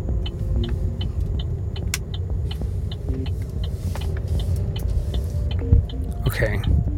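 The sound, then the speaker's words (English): Steady low engine rumble from inside a car driving slowly in Spindale, North Carolina, at nearly nighttime as it pulls up to an entrance, with road noise and small clicks and bumps as it rolls along, faint murmuring in the cabin. “Okay, I'm pulling up and there's a pickup truck.”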